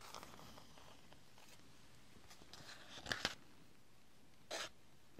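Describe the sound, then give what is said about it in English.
Crisp handling of a textured paper birthday greeting card with rhinestones, with soft rubbing and scraping, a pair of sharp tapping clicks near the middle, and a brief louder scratch toward the end, with no talking. “Cute Cards and Journals Tapping, Page flipping”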